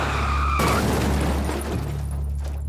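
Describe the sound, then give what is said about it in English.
A car's tires screech in a high, wavering squeal for a moment as it skids off the road, then a loud crunching impact as it hits a tree, followed by a heavy, continuous low rumble that gradually settles. “Ron was not wearing a seatbelt when the car skidded off the road and hit a tree”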